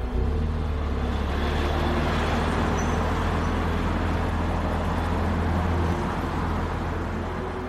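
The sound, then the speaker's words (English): Steady roar of road traffic on Federal Boulevard, a five-lane street with two lanes in each direction and a center turning lane, engines and tires rumbling continuously and heavy vehicles passing, traffic approaching from both directions, no voices. “Federal Boulevard is 5 lanes in total, 2 lanes in each direction and a center turning lane.”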